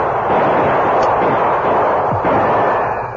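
exchange of gunfire

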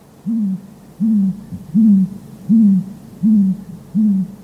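owl hooting

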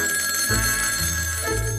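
telephone bell ringing

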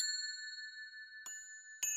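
church bells ringing

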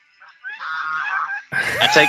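geese honking

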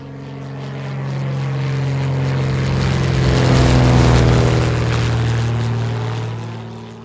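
propeller airplane flying

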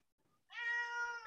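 cat meowing

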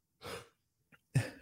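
yawn

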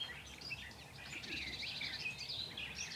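nightingale singing at dawn

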